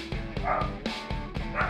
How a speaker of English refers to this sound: I hope the editors have left Joe's barking dog in the back for all this.